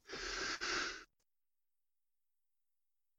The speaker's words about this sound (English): There's that sneeze that's been going on for an hour.